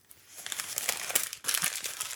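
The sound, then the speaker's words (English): Paper crackles and crinkles as a letter is unfolded to be read for the first time, a busy stream of dry, high-pitched rustles in two bursts with a brief lull in between, with no voices. “I'm not sure, but I'm just reading Friend's letter now for the first time.”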